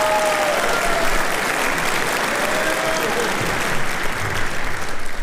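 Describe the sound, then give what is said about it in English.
A large audience at a high school concert claps steadily and loudly for a concert band that has just performed this evening. The applause is a dense, continuous wash that holds at full level for several seconds, with no one speaking. “A big round of applause for a concert band that just got a chance to perform this evening.”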